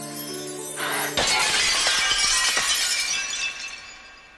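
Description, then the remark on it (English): Glass shatters with a sharp crash after a brief rising tone, then fragments tinkle and scatter for a few seconds, bright, gradually settling. “Probably means that she can take no risks whatsoever in the world, because if she does bump into anything, she will break and she will become a terrifying tangle of flesh and glass.”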